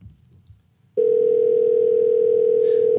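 After a second of quiet, the steady mid-pitched ringing tone of an outgoing phone call from Australia sounds loudly and unbroken for about two seconds, then cuts off, with a brief murmur at the very end.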